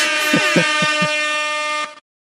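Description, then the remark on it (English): A loud, sustained air horn blast lasting about two seconds, with a few quick low pulses at the start, then cutting off abruptly into silence. “I'm going to give myself like two or three air horns.”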